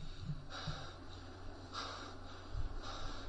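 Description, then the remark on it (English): Heavy breathing in a horror movie scene, quiet and steady: a few slow, airy inhales and exhales repeat in a regular rhythm over low background noise, with no talking. “Some heavy breathing.”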